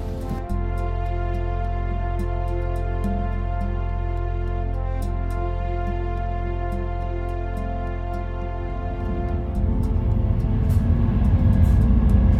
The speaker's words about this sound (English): We've now changed trains and are en route to Savona. This is a slightly slower train than the one I was planning to get to, but then again, I'm not really in a hurry.